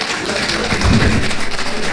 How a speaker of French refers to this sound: Avec toute l'équipe du prestigious Asian Music Awards, nous allons pouvoir commencer cette conférence de presse. Vous pouvez les applaudir, s'il vous plaît.